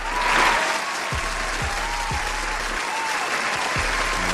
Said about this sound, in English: One more time. Where my applause at? One time.